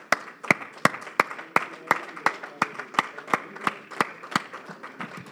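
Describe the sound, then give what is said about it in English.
A church audience claps together in praise of the Lord, in a steady rhythm, sharp unified beats about twice a second over a dense, continuous patter of many hands, with no talking. “Why don't we give the Lord a hand clap of praise right now?”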